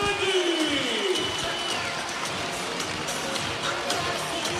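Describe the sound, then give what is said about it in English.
An arena crowd at a basketball game roars and cheers after a three-pointer levels the score at 57 near the end of the third quarter, a steady, dense wash of noise, with a few whistling tones rising and falling near the start. “Gets the crowd up and about.”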